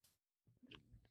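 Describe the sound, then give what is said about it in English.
A short burst of soft clicking and tapping as fingers type a comment on a keyboard, a few keystrokes, a brief pause, then an uneven flurry of keys. No one speaks. “I'm sitting here typing a comment to Facebook viewers and I'm trying to remember”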